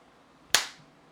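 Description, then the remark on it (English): A single sharp hand clap cracks out of near silence, a bright snap that fades quickly with a short tail. No one speaks. “You clapped and he went, wee.”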